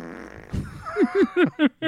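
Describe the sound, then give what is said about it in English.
A loud fart sound effect: a low rumble followed by a quick run of five wet, sputtering blasts, each dropping in pitch, with no talking. “that fart was used in Nutty Professor and a bunch of other things”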